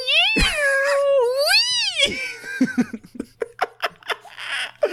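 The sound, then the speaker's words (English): A person imitates a cat with two long, wavering, drawn-out meows, loud, followed by a quick series of short, choppy giggle-like bursts. “Yeah, we made lots of noises and sounds and kooky characters. Meow.”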